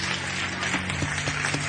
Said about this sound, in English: So they're clapping for the people at the church. Yay, giving them a high five.